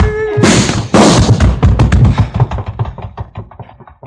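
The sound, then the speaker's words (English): Gunshots: two loud, sharp blasts ring out, followed by a rapid string of cracks and thuds that gradually fade. No one speaks. “I should have had this gun out sooner.”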